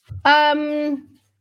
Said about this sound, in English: Sorry, I have a dog here. I have a little pup here with special needs and I have to keep an eye on him every 2 minutes.